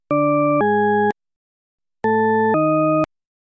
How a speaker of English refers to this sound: When one tone of a pair is played, followed by the second tone, some people hear an ascending pattern. But other people, on listening to the identical pair of tones, hear a descending pattern instead.